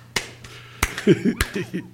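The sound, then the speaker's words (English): Four slow, sharp hand claps from a person clapping while giving the finger land at uneven intervals, each a crisp loud smack, with brief murmured voice sounds in between the later claps. “You know how hard it is to clap and give the finger at the same time?”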